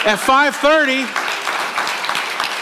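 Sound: audience clapping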